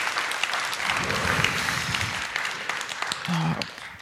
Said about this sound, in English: Thank you guys so much for how you lead us all the time, but especially just for how you made space for the Holy Spirit to lead us today. Can we just give them a round of applause again? Thank God for them.